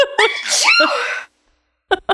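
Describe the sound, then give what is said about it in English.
A single loud sneeze: a sharp inhaled build-up bursting into a forceful, breathy explosion, then a brief silence before two short vocal bursts. “What if I play you back your own sneeze?”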